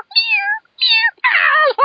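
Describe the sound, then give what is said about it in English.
A voice imitates a cat's mewling with three drawn-out, falling meows in quick succession, loud, the last one rougher and more strained. “Let's just have three little kitties. Three little mewling.”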